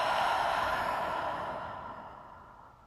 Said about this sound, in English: Continuing to focus on your beautiful breath, breathing in slow. Open mouth, exhale.